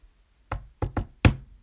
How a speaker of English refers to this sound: I heard a knock on the door with one girl that smelled surprisingly like a cupcake shop.